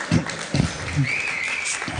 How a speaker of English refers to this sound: I instructed my wife to lead the applause.